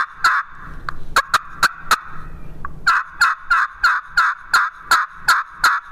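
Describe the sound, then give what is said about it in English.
Over a dozen nasal turkey hen yelps made on a call with a hickory striker, sharp, in a steady rhythm with a short pause partway through before a faster, even run. “Hear that nasally yelp? That to me is an awesome hen yelp.”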